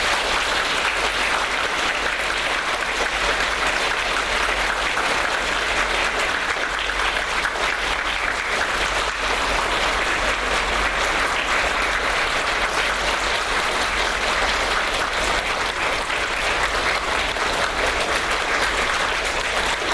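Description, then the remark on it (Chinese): An audience claps steadily for about twenty seconds, a dense, even wash of many hands with no gaps and no voices rising above it, welcoming Khenpo Sodargye and the director of the Humanistic Buddhism research centre at the Chinese University of Hong Kong. “索达吉堪布和香港中文大学的人间佛教学研究中心主任学仪教授，请大家热烈欢迎。”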